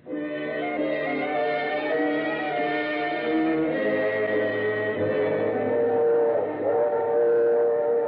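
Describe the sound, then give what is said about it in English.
A train rolls steadily along the tracks, a continuous loud rumble with a droning, tonal ring running through it for the whole stretch, with no voices present. “The package was light in the drawing room, and the train was comfortable.”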